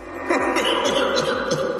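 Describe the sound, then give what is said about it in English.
A low, sinister-sounding voice chuckles in a few rhythmic pulses, smeared with added reverb so each note trails into a hollow, echoing wash; fairly loud. “If you add just a little bit of reverb, it sounds even more sinister.”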